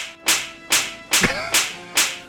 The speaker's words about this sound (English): Give us about three slaps for that.